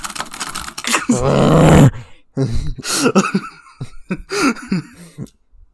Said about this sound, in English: Like, you growl so hard, it sounds like a Stuka siren.